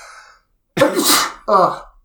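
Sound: sneeze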